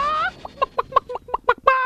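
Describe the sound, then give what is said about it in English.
A person on Ottawa's Move 100 radio show imitates a clucking chicken: a drawn-out squawk, then a quick series of about eight short, choppy clucks, ending in another stretched squawk, loud with no other sounds. “Wow, that's a good chicken.”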